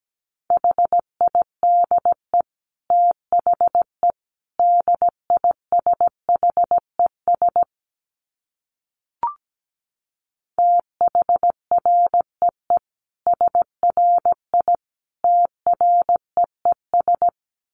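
Morse code sent at around 17 words per minute: a single steady mid-pitched tone keyed in quick short and long beeps, in two runs separated by a brief pause, with no voices.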